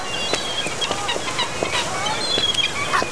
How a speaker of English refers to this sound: Hold on. I think I heard something. Gulls, Mel. I do know what a seagull sounds like.